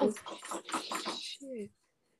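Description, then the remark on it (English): A small cat toy tumbles off a shelf, making a quick run of light clattering knocks for about a second, with a brief voice at the start and a short vocal sound after. “No, something fell from the shelf.”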